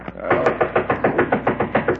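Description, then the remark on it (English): A rapid, steady series of knocks on a bank's door, about nine evenly spaced raps in two seconds, each one loud and thuddy, with no voices. “Uh-oh, somebody's at the door.”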